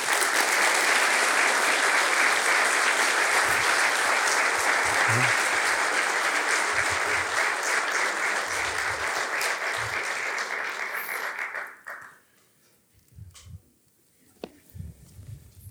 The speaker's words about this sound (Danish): Og kan vi ikke lige give ham en klapsalve?